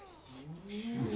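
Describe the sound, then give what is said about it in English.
A single drawn-out meow from a feral cat, its pitch sliding upward and swelling louder toward the end, with no talking over it. “Feral cat, though.”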